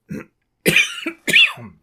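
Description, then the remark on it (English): Loud coughing: a short low grunt, then two harsh, explosive coughs about half a second apart, each with a raspy tail, and no talking. “big believer in coughing noisily in our presentation.”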